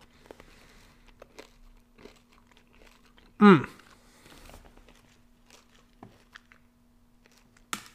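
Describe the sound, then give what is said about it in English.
Chewing of crunchy Nerds Gummy Clusters candy, with one loud, sharp crunch midway and scattered small crackles and mouth clicks around it in otherwise quiet surroundings. “Sorry if you hear me chewing.”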